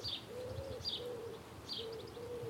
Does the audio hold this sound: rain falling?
no